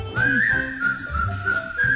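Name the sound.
whistling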